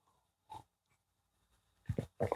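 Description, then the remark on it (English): A short morning slurp of coffee, then a pause, then a few quick, louder gulping swallows in succession. No one speaks. “Excuse me while I take a sip of this coffee.”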